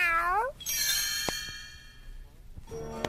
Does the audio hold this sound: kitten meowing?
yes